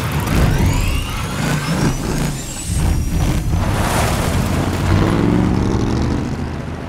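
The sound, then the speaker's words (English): A designed sound, not made only of real car sounds, of Mad Max's car starting up in the middle of the desert in Mad Max: Fury Road: the engine cranks and roars to life, with a rising mechanical whine, bursts of hissing air and a heavy low rumble, loud, no voices. “Right at the top of Mad Max Fury Road, the startup of Mad Max's car out in the middle of the desert.”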